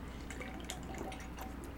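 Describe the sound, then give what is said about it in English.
Quiet, wet slurping as someone sips a thick Frozen Fellow 'Surf and Surf' milkshake, a monkfish and clams casino combination, through a straw, a few short bubbly bursts of liquid sound in a row with no talking. “Oh, well, I just took a nice big sip of the Surf and Surf, which you get to pick your own too, fish.”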